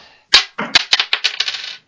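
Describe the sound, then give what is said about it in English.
A coin tossed to pick between St Kilda and Geelong lands with a sharp metallic clink, then bounces and rattles in a quickening series of bright, ringing taps before settling, with no talking. “And now we have St Kilda versus Geelong. Come on, coin.”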